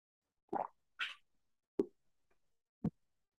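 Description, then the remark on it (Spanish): A few short mouth sounds of someone drinking beer from a can: a sip, a brief airy slurp, then two sharp gulping plops, spaced apart with no talking. “Pero vamos a darle un trago.”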